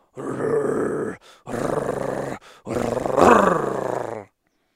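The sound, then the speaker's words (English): Deep, rasping growls and grunting roars from a mating male and female lion at night in moonlight, in three long bursts separated by brief pauses, loud, with no voices. “I moved fast towards the growling, knowing that the lions would be engaged and not hear me.”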